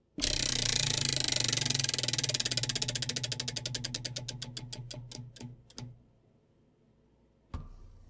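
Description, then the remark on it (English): A prize-style topic wheel is spun to pick the subject of a talk segment, with rapid ratcheting clicks that gradually slow and space out until it stops, followed after a pause by a single dull knock. “So I just wanted you guys to see, like I actually do flip the wheel.”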